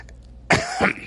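A short cough bursts out suddenly, a harsh double hack with a brief throat-clearing quality, loud against near silence with no talking.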